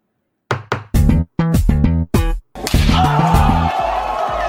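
A gavel bangs five times in quick, uneven succession, loud and close, each strike hard and resonant. The final blow blurs into a sustained, noisy wash that slowly fades.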